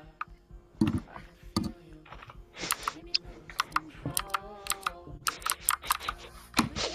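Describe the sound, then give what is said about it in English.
Rapid, irregular clicking of keys being typed on a computer keyboard, fairly crisp, with a low steady hum underneath and no voices. “Are we doing ASMR typing now?”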